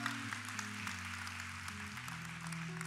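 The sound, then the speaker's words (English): A church audience claps together in a dense, steady patter over sustained low keyboard chords that shift pitch. The clapping stays fairly loud and even throughout, with no voices standing out. “And so anyhow, all right, if we're going to clap, let's all do it together.”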